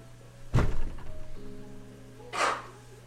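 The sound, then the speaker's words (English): Two abrupt sneezes about two seconds apart: a loud, heavy first burst, then a breathier, higher-pitched second one. A low steady hum runs underneath, and nobody speaks. “Bless you. Bless you.”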